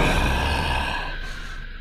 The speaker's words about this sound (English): Why are you breathing so hard?